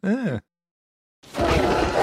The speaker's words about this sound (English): that's a T-Rex from Jurassic Park